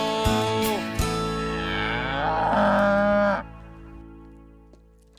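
A cow lets out one long, loud moo, a drawn-out bellow of about three seconds that cuts off abruptly, followed by near silence.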